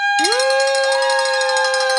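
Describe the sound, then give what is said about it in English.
A hand bell rings continuously and loudly, its bright metallic tone held steady with a rapid shimmering rattle from repeated clapper strikes throughout, and no voices over it. The bell is rung for the people who have called in. “I got the bell. That is awesome. And that ring comes from all the people that have called in.”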